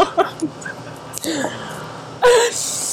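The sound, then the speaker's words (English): A person imitates a dog with a run of short whiny yips and whimpers, then a loud, rough growling burst near the end. “He's gonna be like, oh shit, you growl!”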